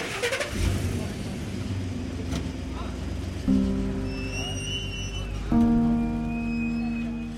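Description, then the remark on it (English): A car engine starts up, then revs and pulls away, its pitch rising in two distinct steps as it accelerates, steady and fairly loud throughout, as a family drives off from a prison after a reunion. “But as the family start to drive off, I see there are still a couple dozen men left.”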